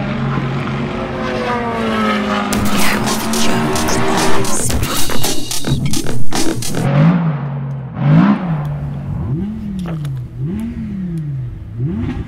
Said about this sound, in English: The sound of engines revving in the background. I'm not sure what that is. Someone trying to get some power into their recharging device, I think, because there's no running on the circuit at the moment because it's the morning after the night before